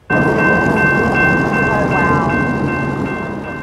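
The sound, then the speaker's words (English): A specially painted train carrying George H.W. Bush along a 130-kilometer route in Texas to his presidential library passes with a loud, steady rumble, rhythmic clacking from the wheels, and a sustained high whining tone over the roar. “After a funeral in Houston, Texans lined the 130-kilometer train route as a specially painted train carried Bush to his final resting place on the grounds of his presidential library.”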